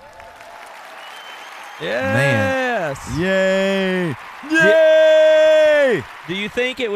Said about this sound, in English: Do you think it would be awesome to do the podcast in the middle of a stadium like that with that kind of applause? Can you picture it?